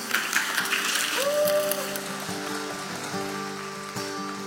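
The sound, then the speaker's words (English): A church audience claps and cheers during a worship service, dense crackling applause strongest in the first second or so, then thinning while steady, sustained musical tones carry on underneath. “Come on, church, let's make some noise and celebrate.”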